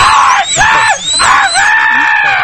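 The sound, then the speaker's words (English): A person screams loudly, letting out three long, piercing shrieks in quick succession with brief breaks between them and no talking. “He's a little off his game because he's used to hear people screaming in the background.”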